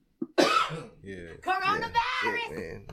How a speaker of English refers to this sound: Coronavirus! Coronavirus! 16-day cough.